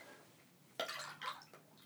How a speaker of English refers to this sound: And we'll do it. We'll do it without the vodka first. It's a wide mouth Mason type jar. And I'm going to pour you a little here.